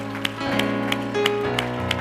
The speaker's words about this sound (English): Clap your hands one more time unto Jesus.